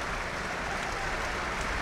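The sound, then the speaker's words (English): A big stadium crowd at a football match applauds, 41 and a half minutes into the game, in a steady, dense wash of clapping and cheering noise that holds at an even loudness throughout, with no voices standing out. “As applause rings out around the stadium.”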